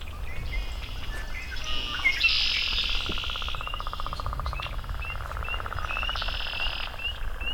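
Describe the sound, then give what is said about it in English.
A chorus of male red-winged blackbirds sings all around, several overlapping calls and buzzy trills repeating, with a faint pulsing trill and low outdoor rumble beneath. “As you can hear, there's red-winged blackbirds everywhere here.”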